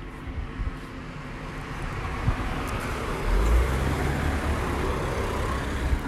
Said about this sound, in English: Oh, there's a car coming. Hold on a sec.